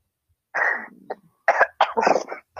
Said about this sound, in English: Why he coughed? Remember, he coughed like a little kid.